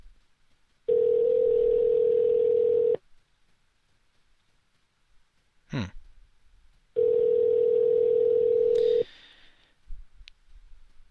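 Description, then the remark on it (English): Ringback tone on a phone line during a call to a poker room: two loud, steady, low-pitched buzzing rings, each about two seconds long, separated by a pause of roughly four seconds with a brief blip in between. “Yeah, it's ringing.”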